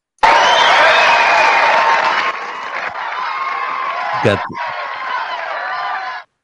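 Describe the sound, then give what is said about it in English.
A large crowd roars and cheers steadily at a sports game, a dense wash of voices with scattered shouts, holding loud for several seconds before easing slightly. “They won the previous game and now they got a bigger crowd.”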